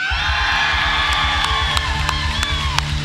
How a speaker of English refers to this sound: I'm going to count to three, and at three, I need you to go ahead and loosen up, get ready, scream, yell, or whatever, so that when they come out, we're ready, okay? So on three, give me your best, hooping it up, okay?